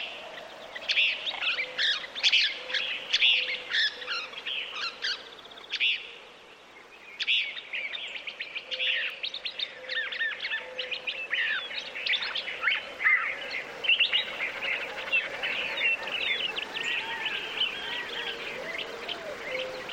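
A dense chorus of desert birds chirping and singing continuously at dawn on Gray Ranch, a 500-square-mile Nature Conservancy easement in the panhandle of New Mexico. Many overlapping high-pitched calls and trills, with a faint steady low hum beneath and no voices.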